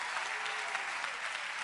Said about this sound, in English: Come on, clap your hands.